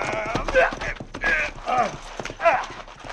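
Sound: horses galloping hooves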